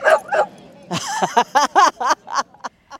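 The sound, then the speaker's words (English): Several dogs bark and yip at Dog Mountain, a dog park, in quick, uneven bursts, loud, with a few whimpering yelps mixed in among the sharper barks. “It's sacred space for dogs and the people who love them.”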